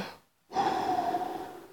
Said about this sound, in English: So deep breath.